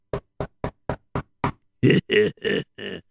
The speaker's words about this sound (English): Let's go knock on the door. Sir, of course, I will knock on the door.